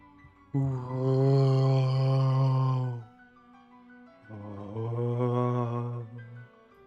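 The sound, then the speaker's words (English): A voice imitates an eerie, wind-like moan in two long, low, steady drawn-out tones with a short pause between them; the second moan is slightly softer. “a moaning sound, which you think might be the wind, though.”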